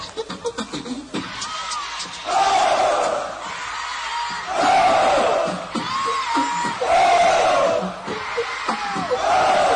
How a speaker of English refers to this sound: And when I put my right hand in the air, I want all the homeboys to scream, ho, all right, let's do it.